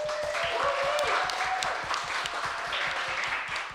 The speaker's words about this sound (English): can we like give Max, our sound technician, a round of applause?